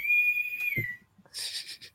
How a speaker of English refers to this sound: What's that whistling? Is that your mom whistling in the background?